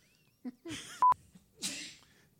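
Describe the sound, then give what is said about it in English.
A breathy sneeze: a sharp hissing burst, a brief electronic beep, then a second forceful sneezing blast, with no talking. “Good Lord. Bless you.”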